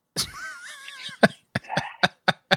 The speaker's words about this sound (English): Slight sniffle.